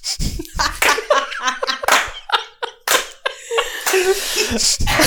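A slow clap: sharp, sparse smacks of hands spaced roughly a second apart, loud and crisp, with laughter and lively voices filling the gaps between them.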